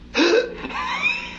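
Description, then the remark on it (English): A man's voice demonstrates eefing in a recording: one sharp, hiccup-like gasping catch, then a softer breathy vocal trail that fades out. No words are spoken. “this is a recording of a man called …, where he explains what Eefing is all about”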